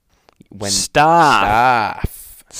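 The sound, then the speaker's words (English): A single loud yawn: a sharp breathy intake followed by a long voiced groan that rises and then sinks in pitch, trailing off into a soft exhale. “I'm yawning now.”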